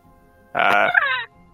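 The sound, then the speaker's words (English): A person imitates a bird's caw with one loud, harsh, drawn-out squawk lasting under a second. It bends downward at the end, with quiet before and after. “Still bird.”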